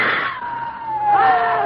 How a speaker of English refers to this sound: No! It's flying at us. Scream again. Make noise.